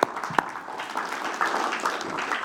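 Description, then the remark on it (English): An audience applauds a panel as they step down, a dense wash of many hands clapping at a moderate level with a few sharper claps standing out at the start. “Yeah, again, give them a round of applause as they step down.”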